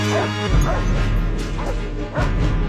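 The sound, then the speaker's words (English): A celebrity dog barks a few times in short, separate bursts, partly buried beneath loud, dramatic orchestral music that plays continuously throughout. “That's not, the rules don't cover whether the music covers up the dog.”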